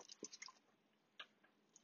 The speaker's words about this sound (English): Oh, if you guys can hear that bubble. Yeah, when it starts to bubble, you gotta mix it.